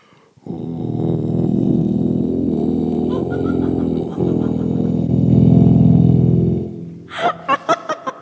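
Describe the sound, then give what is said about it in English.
A voice holds a very low, rumbling hum for about six seconds, buzzy and growl-like with an eerie, otherworldly quality, then breaks into a few short, choppy bursts of laughter. “To a certain point, it sounds like a cat purring, I feel like. It also sounds like an alien.”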